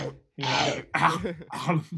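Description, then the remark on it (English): Someone imitates an audiobook narrator clearing his throat: three harsh, rasping vocal bursts in quick succession, fairly loud, after a brief pause at the start. “Imagine, I was kind of hoping that he would do the voice, but like he has to clear his throat every other page.”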